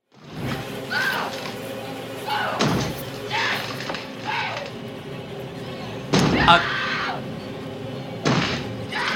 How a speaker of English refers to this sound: Oh, it's The Shining when he breaks the door. Oh, shit. You're right. You're totally right. Here's Johnny.